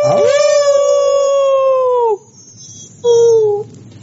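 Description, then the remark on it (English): A person imitates a long, loud dog-like howl, holding a steady pitched wail for about two seconds that sags at the end, then gives a second, shorter howl after a brief pause. “Even if he did, I just start howling in the middle of him talking.”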